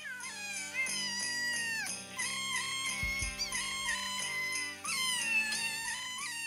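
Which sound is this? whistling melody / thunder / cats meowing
cats meowing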